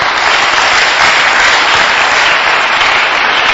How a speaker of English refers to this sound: The Lord Jesus wants you to clap for this word.